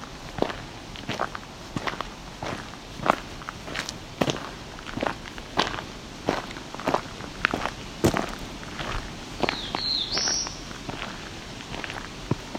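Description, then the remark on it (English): A black-throated blue warbler gives one brief, high, rising buzzy call partway through, heard over a steady series of crunching footsteps that fill the whole recording. “This sounds loud enough that I should be able to see this bird.”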